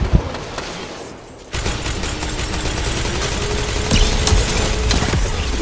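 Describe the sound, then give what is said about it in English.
Gunfire from a video game hand cannon cracks out amid a dense, noisy battle mix, with several sharp shots over a steady mechanical rumble and no voices. “Our hand cannon.”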